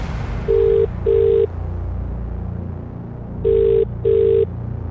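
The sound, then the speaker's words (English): An outgoing call's ringback tone to a mobile phone plays two double-burst rings, a pause between the pairs, steady and fairly loud over a constant low background hum. “The mobile phone you have called is currently not accepting incoming calls.”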